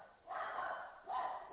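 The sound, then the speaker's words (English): Two short barks from a dog behind a man taking part in a conversation, each a brief burst with a pause between, fairly faint and heard alone without talking. “Somebody's dog's behind him.”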